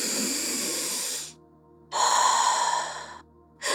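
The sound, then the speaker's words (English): Slow, deep breaths: two long airy inhales or exhales separated by short pauses, with a third beginning at the end. No one speaks. “Taking deep breaths, Manipulata closed her eyes.”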